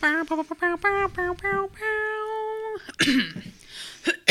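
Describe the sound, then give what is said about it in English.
A voice makes a few short voiced sounds and a held tone, then clears its throat with rough, raspy bursts, ending in one last sharp rasp. “Excuse me, I'm going to clear my throat.”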